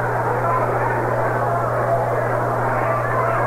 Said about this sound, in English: A little rumbling thunder overhead. It rained this morning.